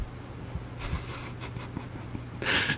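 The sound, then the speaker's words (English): A short run of rough, breathy coughs: a few scattered hacks, then a louder burst at the end, over a low steady hum with no talking. “There's a coughing fit, ladies and gentlemen.”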